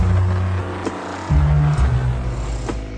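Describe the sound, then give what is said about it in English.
Loud, steady construction noise from a jackhammer and chainsaw at construction work by a rented house's yard in Las Vegas: a low, droning engine rumble that shifts pitch partway through, with a few sharp clatters cutting in. No one speaks. “We had about a week of this noise. Got a jackhammer and a chainsaw.”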